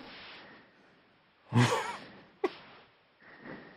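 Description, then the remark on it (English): A woman caller's faint breath comes over a hissy, muffled phone line, with one heavier exhale in the middle, a sharp click just after, and a softer breath near the end. No one speaks. “I can hear her breathing.”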